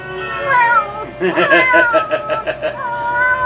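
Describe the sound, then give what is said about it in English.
A cat meows loudly and insistently, its drawn-out, wavering cries clear, with a rapid pulsing stretch in the middle before a final plaintive yowl. “That darn cat.”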